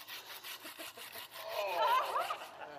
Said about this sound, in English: And I want you to listen to the crowd who's standing around. They gasp because it's really violent. Watch this. You go down and you cut the vine.